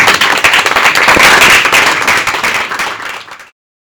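A dense round of applause from a crowd, many hands clapping at once in a steady, loud wash that holds for about three seconds before cutting off abruptly.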